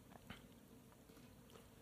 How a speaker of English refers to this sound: Don't mute yourself, that's the point. I felt weird for our listeners if I was chewing in their ear.